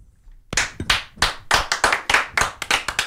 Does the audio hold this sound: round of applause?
yes